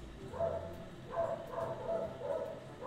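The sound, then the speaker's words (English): A dog named Gizmo barks again and again in short, sharp bursts, a handful of barks in quick succession, moderately loud, with no one speaking. “Probably the mailman is coming by and he's just barking at the mailman.”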